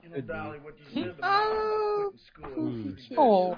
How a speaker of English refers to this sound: Oh! Oh, that's a nice cat.